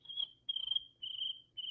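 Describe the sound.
A person imitates cricket chirping with their voice: a thin, high, steady trill in four sustained bursts separated by brief pauses, moderately loud, with no talking.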